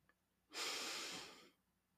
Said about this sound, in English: So before we dive in, let's take a moment together, and we can start by taking a few deep breaths.